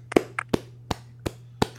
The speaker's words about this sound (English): I don't know if you see me clapping and then you hear it.